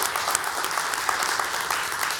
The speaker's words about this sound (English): All right, so let's just say thanks to all our volunteers. We really appreciate them. Let's bless them with some applause.